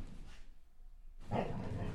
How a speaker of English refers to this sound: The dog is really ramped up right now. Maybe it's the incense.